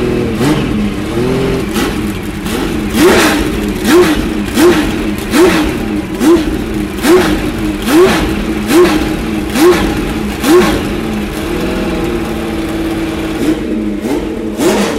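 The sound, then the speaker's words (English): The loud flat-12 engine of a 917 racing car revs over and over, its pitch climbing in quick, regular surges roughly twice a second, with a steady mechanical roar underneath and no voices. “That flat 12 just sounds gorgeous.”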